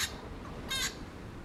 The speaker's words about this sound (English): Listen to the surging sea and cries of the little wattle bird as we take you to the town of Moruya, where Sage began, and explore the alternative imaginaries this community is creating.